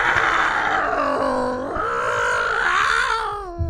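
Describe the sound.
A man's voice mimics cats mating, a continuous wavering yowl with sliding pitch and strained, growly harmonics, loud and unbroken for nearly four seconds.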